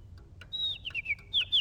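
A loose pet bird chirps indoors in a house in a quick run of high, whistly tweets and short sliding calls, over a faint low background hum.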